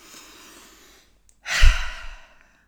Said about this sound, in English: Breathing, something we can all do better at, taking deep breaths.